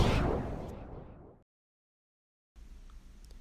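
A single loud gunshot with a broad, booming tail that fades over about a second, then sudden silence before faint low background noise returns.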